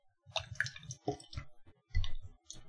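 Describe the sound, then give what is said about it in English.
A dark, chocolatey mint beer is poured into a glass, a faint run of wet splashing and glugging bursts, uneven in rhythm, with no one talking. “All right, I'm going to go ahead and pour it into mine now.”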